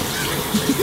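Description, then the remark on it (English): A shower runs steadily, a continuous hiss of water spraying at moderate volume with a few faint low bumps, heard alone and briefly. “I was actually just wondering if I could have a shower. Oh, yeah. I mean, I don't have a problem with it.”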